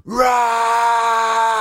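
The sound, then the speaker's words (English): A voice imitates a man's anguished, angry scream on finding his dad's black Corvette with a rock through its window: one loud, sustained cry that swoops up at the start and then holds a steady, strained pitch for over a second, with no other sounds. “So I start walking back to the house and I hear a scream of agony.”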